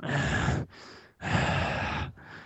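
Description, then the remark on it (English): A person breathes heavily and deliberately: two loud, rasping breaths, each followed by a softer one, in an exaggerated, imitated rhythm with no talking. “But you hung up the podcast, so it's just, but so then you just hear me breathing on the podcast for like another 3 hours, and then I put it out.”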